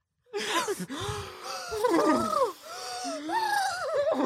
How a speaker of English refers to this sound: I think before we go into the next scene, we gotta do some breathing exercises.